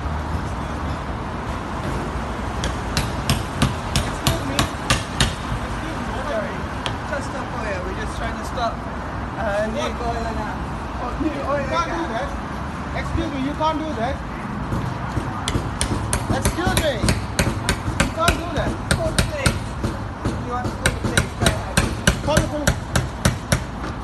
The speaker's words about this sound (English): here's one running around in London, just hammering gas stations.